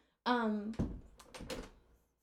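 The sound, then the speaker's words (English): A door is closed while a pet cat named Cliff is at it: it swings shut with a drawn-out creaking squeal from the hinges, then a solid thud and a few quick rattling knocks as it latches. “Cliffy, I can't have the door open.”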